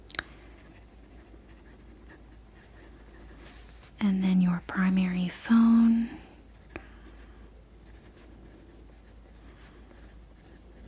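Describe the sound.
Soft, steady computer keyboard typing runs through the whole clip as a faint, continuous patter of light clicks while personal details such as an email and mailing address are entered, with a short stretch of quiet, soft-spoken words partway through.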